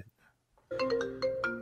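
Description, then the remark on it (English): A mobile phone ringtone for a call to Ray from his mom starts up suddenly and plays a bright, repeating melodic pattern with sharp rhythmic pulses, loud, after a brief quiet moment with faint murmuring. “All right, so now Ray's getting a call from his mom.”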